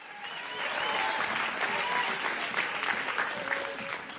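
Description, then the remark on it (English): A church audience claps their hands and shouts to the Lord in a dense, steady wash of applause that swells quickly and holds at a fairly loud level, with faint voices and cheers mixed into the crowd noise. “Take 30 seconds. Clap your hands.”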